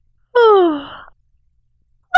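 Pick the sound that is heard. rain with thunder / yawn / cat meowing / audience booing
yawn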